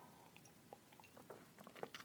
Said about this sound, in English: Ugh, this makes me need a sip. Let me take a little sip right now.